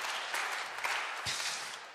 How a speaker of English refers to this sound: Thank you, Amara. Let's give Amara a big round of applause.